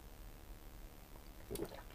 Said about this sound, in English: Right, Pea Supers, I am ready as I'll ever be, so let me just have a sip of tea.